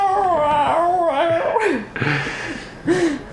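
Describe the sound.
A voice imitates a distressed cat with a long wavering, whiny yowl followed by a couple of shorter strained mewls, fairly loud with no other sounds around it.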